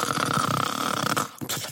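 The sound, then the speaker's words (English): A single drawn-out, rasping snore, voiced by a person imitating it, loud, breaks off in a brief pause and then a short breathy snort. “She listened for one snore.”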